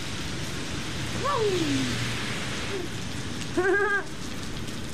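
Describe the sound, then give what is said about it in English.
Steady, heavy rain pours down outside the courthouse in Paris, Texas, in a dense, continuous hiss, with two brief high, gliding tonal calls cutting through the downpour midway. “We walk out of the Paris, Texas courthouse into the pouring rain.”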